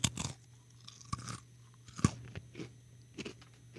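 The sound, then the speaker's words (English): Quiet chewing of a snack with a few soft crunches, irregular bites spread over a few seconds, one slightly sharper crunch midway, with no talking. “We'll see if we can identify it based on the crunch.”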